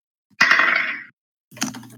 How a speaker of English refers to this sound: This door creaks open. There's a creak.